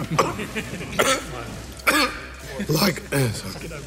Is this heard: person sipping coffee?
no